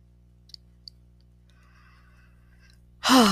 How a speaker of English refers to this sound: I'm having a little bit of a yawn. If you do, that's good. If you don't, no problem.